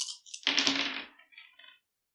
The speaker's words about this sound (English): You're going to roll 6 dice and see how much damage you soak out of 3.